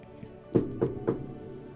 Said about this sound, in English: Can't do that knock anymore. Sounds cool though. Yeah. It's eerie. Maybe if it's a spooky knock. It does. It sounds like just hollow. Uh-huh. Sounds like a haunted house knock.